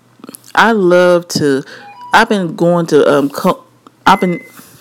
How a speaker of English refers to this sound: Excuse me, my microwave is going off. It tells me to get the vegetables out.